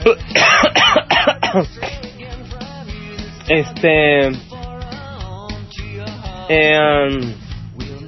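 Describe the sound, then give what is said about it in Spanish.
A burst of harsh coughs at the start, followed by raspy throat clearing and strained, voiced hacking sounds that continue in loud spurts. “Ya me dio tos.”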